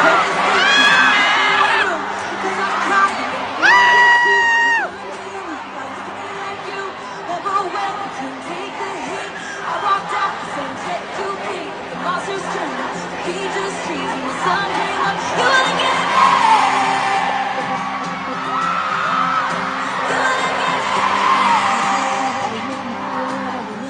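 A live concert song with a loud, steady roar of crowd cheering and screaming throughout, a singing voice rising and falling in bursts over the noise of the audience.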